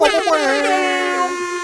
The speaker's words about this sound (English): insert name of guest here, cue the air horns.